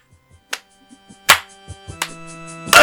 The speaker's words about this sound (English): Just the claps! Just the claps.